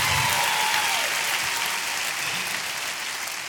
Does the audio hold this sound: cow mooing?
no